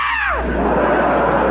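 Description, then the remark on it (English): A burst of high, shrill screams slides downward and dissolves into a dense, loud wash of crowd noise that carries on steadily to the end. “For …, they swoon. For me, they scream.”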